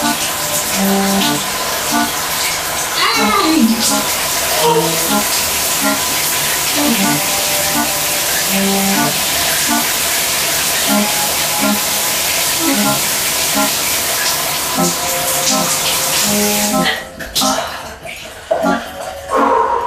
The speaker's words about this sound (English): I'm going to start it off at a normal temperature and then at the end of the shower turn the hot water off and try and do that for 30 seconds. Okay, I'm turning the hot water off now.